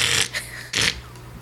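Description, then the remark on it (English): A person imitates a cat hacking up a hairball: two harsh, breathy retching bursts with a short gap between them, loud and rough, with a low throaty rumble underneath. “That's my hairball impression.”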